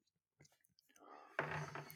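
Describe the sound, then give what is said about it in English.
Someone sips a drink close to the mic: a few faint mouth clicks and shuffles, then a sudden airy slurp that rises and holds for about half a second. “I want to kill the blank space while … sipping”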